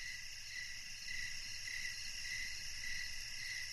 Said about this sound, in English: It just says, sounds of night crickets. That's all it says.